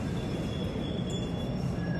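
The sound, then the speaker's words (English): A steady, loud rumble of a subway car rolling along the rails, with a thin high metallic whine running over the continuous low roar. No one speaks. “We caught de Blasio riding the subway.”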